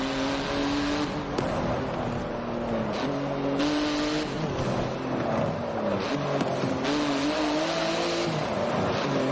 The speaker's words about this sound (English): I'm hitting a lot of cars. And I'm sure cars are hitting me, too.